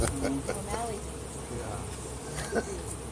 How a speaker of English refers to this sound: Irish bees, man. You got some.